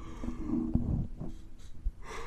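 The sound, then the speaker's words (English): A single drawn-out yawn, a breathy, low voiced groan that trails off into a soft exhale and a quick breath at the end. “I didn't mean to yawn your ear again, my bad.”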